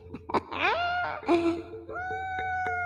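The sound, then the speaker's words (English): A loud, drawn-out wail like a yowling cat, with several rising, warbling cries that settle into a long, strained tone. No one talks. “Sound like a dying cat.”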